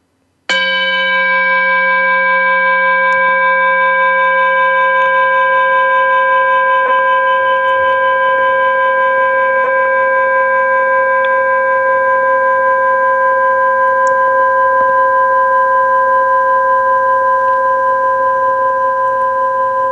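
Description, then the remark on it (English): A single bell is struck once for a moment of silence, and its bright, layered ringing tone sustains and hums steadily for nearly twenty seconds, fading only slightly, with no voices. “I'll ring a bell so that we can just breathe a little bit together.”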